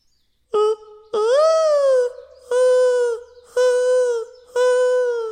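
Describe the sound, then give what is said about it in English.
A dove's mating call: five loud cooing notes in a steady rhythm, the second drawn out longer, each a rich hollow tone with brief pauses between. No talking. “That dove put the bird back in the birds and the bees.”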